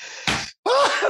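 A single sneeze: a sudden harsh, breathy burst, a brief break, then a strained voiced tail that rises and falls in pitch. Loud and abrupt, with no talking.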